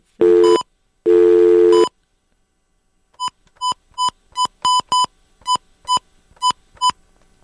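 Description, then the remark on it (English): A telephone line cuts out: two loud, harsh tone bursts, then a short pause and a steady run of about a dozen quick, evenly spaced beeps like a fast busy signal. “So we'll see if we get him back again, because we're having just a little trouble with the phone tonight.”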